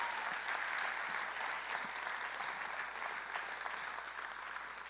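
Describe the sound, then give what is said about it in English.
An audience in a room full of Christians claps steadily throughout, a dense, even wash of many hands with no pauses or voices standing out, holding at a constant level for the whole stretch. “It's very easy to clap in a room full of Christians, but it is very hard to live that out day by day”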